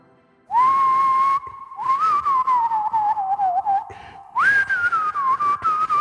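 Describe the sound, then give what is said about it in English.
Someone whistles the Succession theme song tune, starting with a long sustained note, then a wavering phrase that dips lower before jumping up to a higher, slightly strained note. “I can never get the high note on my whistle.”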